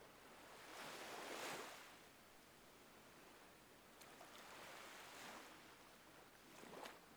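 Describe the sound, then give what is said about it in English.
Sea waves wash onto the shore in slow, broad surges, each swelling and fading back into a steady hiss of surf, with no voices present. “The sound of the sea will take you deeper and deeper into the healing land of sleep.”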